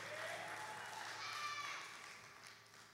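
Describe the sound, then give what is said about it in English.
A church audience claps during a sermon in a dense, steady wash of applause with voices calling out beneath it, holding loud for a few seconds before easing off slightly at the end. “Can somebody clap and get loud and say amen?”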